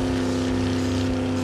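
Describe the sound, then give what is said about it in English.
A food truck engine roars loudly and steadily, a continuous droning hum with a strong low rumble and no voices, just before the truck crashes through a railing. “leaps from his truck as it crashes through the railing and slams into the face of a monster.”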